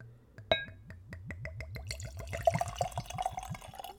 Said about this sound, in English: But when I popped the bottle open, it has got a very dill pickle. It smells like pickle just on the nose right out of the bottle. Okay, so let's give it a pour.